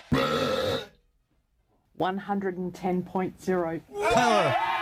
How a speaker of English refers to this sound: at the urging of his wife, who recognized his burping talents, encouraged him to go for the record, and he blew it away.